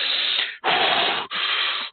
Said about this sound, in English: And you're forcing air in and forcing it out. So, and you're doing diaphragmatic breathing.